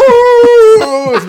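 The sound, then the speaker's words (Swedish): A human voice howls like a wolf, imitating howling in pain while a dentist pulls out tooth roots. It holds one long, steady high tone, then sags and wavers into a lower, breaking moan, loud and with no other talk over it. “Och jag bara ligger där och ylar.”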